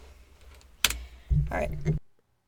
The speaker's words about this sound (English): I just knocked over a microphone. Good thing it was muted, or that would have been really loud.